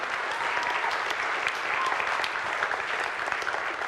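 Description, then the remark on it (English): A crowd applauds steadily, a dense wash of overlapping claps holding at an even, fairly loud level for a few seconds with no voices over it. “Well, give him a round of applause, because I think that's exciting.”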